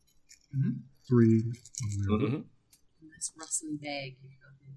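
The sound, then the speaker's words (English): A bag of dice rustles and rattles, giving a few brief, scattered clinks while people talk over it. “Nice rustling bag.”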